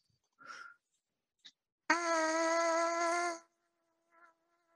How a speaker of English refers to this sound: How do you know if your air is steady? You buzz the mouthpiece. First, the trumpet is just the amplifier, as you know. And if your air is all over the place, you make it, you keep buzzing until it becomes steady.